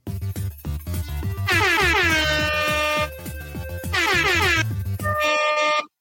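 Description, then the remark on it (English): Loud, blaring rap-style air horn blasts repeat in a rapid rhythmic pattern over a thumping beat, with sustained bursts and bright harmonic tones filling the mix, no talking. “Someone has a rap air horn and they're not afraid to use it.”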